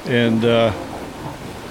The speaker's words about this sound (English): I mean, right now we have this lovely sound of these waves that are moving in across the surface of this jetty. And it quiets down.